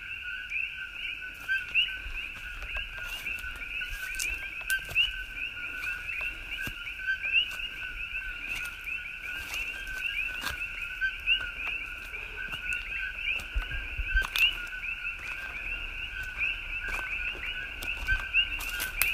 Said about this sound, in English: I moved to another part of the property, a little further up, a little further away from the road. I still don't see any frogs, but I sure hear lots of them.